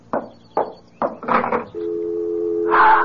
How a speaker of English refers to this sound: It's the dial tone. Hold on to the phone.